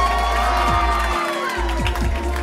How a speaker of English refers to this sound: But you guys are going to completely love her. Please start clapping